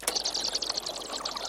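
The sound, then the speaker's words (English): Bats clicking and chittering in a dense, rapid flurry of high, sharp ticks that blur into a steady crackling texture, fairly loud throughout, with no voices. “I've got all kinds of stuff this week. Bats.”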